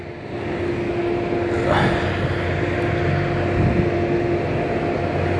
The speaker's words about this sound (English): Okay, sorry about that. I'm trying to let this fucking truck go by.